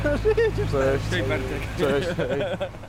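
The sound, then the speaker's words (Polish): A car's engine hums low and steady as it sets off from Zakopane toward the peat bogs, heard from inside the vehicle while people talk over the rumble. “Wsiadamy do samochodu i ruszamy z Zakopanego w stronę torfowisk.”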